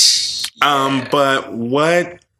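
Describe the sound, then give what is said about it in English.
A female pet bird mimics human speech, producing a few short, slurred, voice-like phrases. A breathy hiss comes first; the phrases are fairly loud, with brief pauses between them. “Is the bird something. Talking? Yeah, she's saying something. I can't make it out.”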